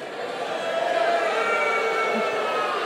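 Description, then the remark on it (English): A crowd of men in an audience boos at the mention of Nashville as the Bachelorette Party Capital, a dense, sustained wash of low, drawn-out voices that holds steady at a fairly loud level for the whole stretch, with no individual words standing out. “A lot of guys booing.”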